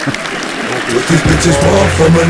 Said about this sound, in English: Applause, laughter.